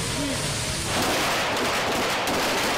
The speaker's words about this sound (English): Recruits train to safely fire the M9 Beretta pistol, slide in your hand, as well as to assemble and disassemble it.